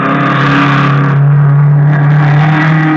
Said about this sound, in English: Two of them weren't hard to spot. They were racing in a low, cut-down blue car. The frame had looked familiar as it whizzed by me.